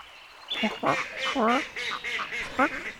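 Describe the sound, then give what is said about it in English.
A duck quacks repeatedly, a quick irregular run of nasal, raspy calls, loud against a faint steady background hiss. “But if we are patient and quiet and don't move, we could shoot ourselves some ducks today, and we can hang some ducks on our wall.”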